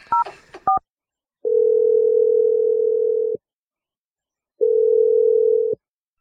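A quick burst of touch-tone dialing beeps as a phone number is dialed from a morning radio show, then an outgoing call's ringback tone: two long, steady electronic rings separated by a pause of silence, clear with no voices.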